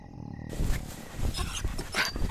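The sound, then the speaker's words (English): A dog on someone's pillow makes rough, huffing and growly noises in a steady stretch of irregular bursts, moderately loud, with no one talking. “Hey, that's my pillow, effing dog.”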